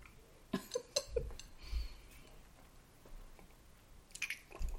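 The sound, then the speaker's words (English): Quiet sipping from drinks, one of them a vodka mix: a few soft wet slurps and swallows with small clicks of a glass, then another brief sip near the end, with no talking. “Take a sip of this Douce. Okay. And I'll take a sip of my vodka mix.”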